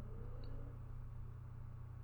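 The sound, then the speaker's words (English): A car engine revs up outside with a steady, low, droning hum, fairly faint. It holds an even level throughout, with no voices. “I heard a car rev up outside, and I thought it was a nuclear...”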